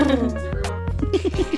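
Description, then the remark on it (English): A voice imitates the purr of mimic creatures: a low, rolling, throaty rumble ending in a few quick rhythmic pulses, with no words spoken. “The mimics kind of purr because they feel included.”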